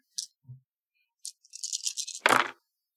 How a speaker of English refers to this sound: So then give me an art plus expression roll. Art plus expression. Ooh, that's all the dice.